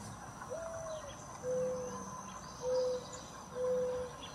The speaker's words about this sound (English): Oh yeah, I know this sound. You can hear a tonal change in the mourning dove, the hoo, hoo, hoo. Yeah. Yeah, but the mourning dove, I think, is such a gorgeous, gentle call that when I hear it in the mornings, it really roots me in place.